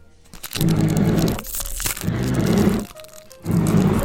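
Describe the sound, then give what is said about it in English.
A second card booster pack being torn open: three loud bursts of crinkly, ripping foil noise with short pauses between them, and no voices. “There is something really satisfying about the smell of a freshly opened pack.”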